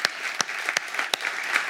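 An audience claps steadily, a dense wash of many hands with a few sharper, louder claps standing out at irregular moments.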